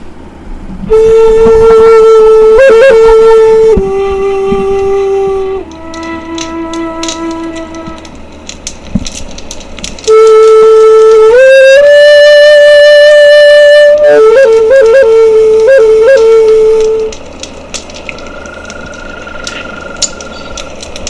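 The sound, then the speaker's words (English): A bamboo flute, played by the character Bill beside a campfire-like fireplace, plays a slow, loud melody of long sustained notes that step downward, then rise again, with quick trilled ornaments between phrases and a softer held tone at the end. No one speaks. “So chapter 8 so chapter 8 starts as a flashback and we see Bill playing his bamboo flute again with the bride at a fireplace, like a campfire sort of thing.”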